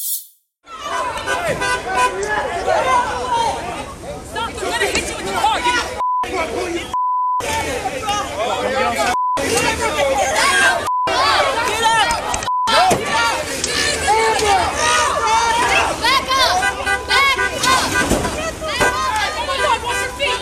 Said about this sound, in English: You'll see the mob swarm a truck. The truck drives away, and in the chaos, ends up crashing.